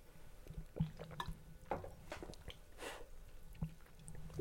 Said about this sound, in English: There's a sound of... How grotesque slurping and gulping nasty poison.